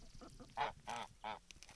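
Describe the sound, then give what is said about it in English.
A bigger goose, just chased out of the duck room, honks three times in quick succession, loud, each call a brassy, nasal blast, with a few softer, quieter calls just before them. “The bigger goose just got chased out of the duck the duck room.”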